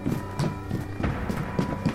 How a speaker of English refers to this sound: The horses are coming.